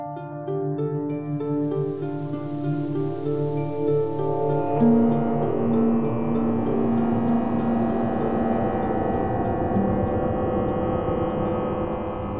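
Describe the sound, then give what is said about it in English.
A sci-fi tractor beam effect: a dense, steady electronic drone of layered humming tones, with a brighter sustained pitch rising out of it midway and holding to the end. “Ah, I haven't heard that sound in a while. A tractor beam.”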